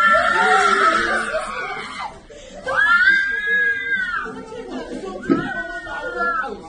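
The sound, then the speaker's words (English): Relatives of a Palestinian woman released from an Israeli prison scream and shriek with joy, high excited voices overlapping in several loud bursts, mixed with cheering and laughter. “A Palestinian woman was released to joyous screams from relatives.”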